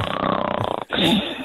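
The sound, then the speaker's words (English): A radio caller imitates their partner's snoring with their voice: a loud, rapidly fluttering throaty rattle lasting under a second, a brief break, then a rougher, sustained snorting rasp. No one speaks. “Look, mine's more of a snorer, so I'm more imitating his snoring.”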